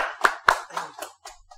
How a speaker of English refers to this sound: I think that deserves a round of applause, people. Thank you, thank you.